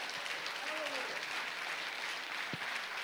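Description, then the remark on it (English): An audience claps their hands for the Lord as the pastor comes up, in a steady, dense wash of applause that fills the whole clip at an even loudness, with a brief vocal sweep rising faintly through it. “Give the Lord a hand clap as Pastor comes.”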